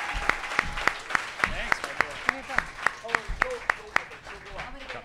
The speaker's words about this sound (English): Guys, give her a giant round of applause. …, everybody. Thank you.